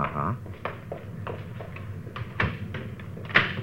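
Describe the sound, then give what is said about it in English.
A door is pushed shut, with a series of soft knocks and latch clicks spread over a few seconds, ending in a sharper bump, over a steady low hum. “Closing that so they won't know anybody's been here, huh?”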